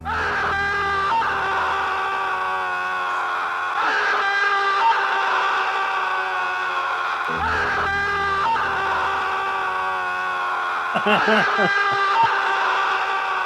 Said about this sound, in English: Oh, we got to play the Scream. How could I forget about a little Scream?